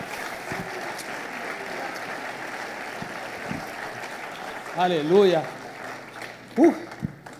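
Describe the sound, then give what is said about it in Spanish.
A church audience applauds for the Lord in a steady, dense wash of clapping that lasts the whole time, while a voice calls out loudly over it once and a shorter shout follows. “¿Puede darle un fuerte aplauso al Señor?”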